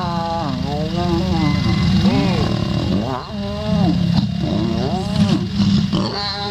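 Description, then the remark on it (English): Lions make mating noises: deep, rumbling growls with wavering, moaning tones that rise and fall in repeated drawn-out bursts, loud and nearly continuous for several seconds. “Let's go to lion mating.”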